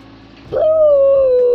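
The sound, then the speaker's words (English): A single long, eerie howl from a white shape in a dark hall swells in abruptly after a brief low murmur, then holds loud, its pitch sagging slowly downward without a break. “Boo! It howled.”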